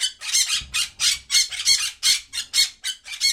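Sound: parrot squawking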